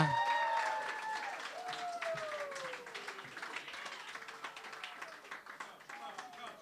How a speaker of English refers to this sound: You're clapping her booing. But it sounds just like you're clapping for my decision.